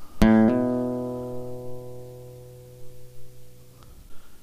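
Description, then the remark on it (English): A guitar's open string is plucked, and a moment later the index finger hammers on a fretted note, raising the pitch slightly. The single bright tone then rings and slowly fades for several seconds. It is played as a bass note on the first beat of a G measure. “So on the B, when we use the B in the bass, on that first beat of the second measure of G, instead of just hitting it directly, let's hammer on the open string. We start with the open string, and then hammer our index finger on.”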